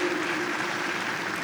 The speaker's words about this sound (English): I'm sure you were applauding, hoping … would sing again.